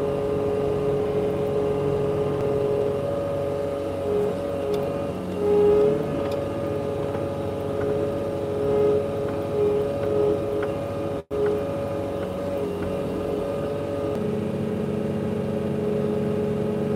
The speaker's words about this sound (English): I've never tried trimming bushes with a blower. I don't think it would work very well. I definitely not trim bushes with a blower. It would be really bad. It would do a poor job of that.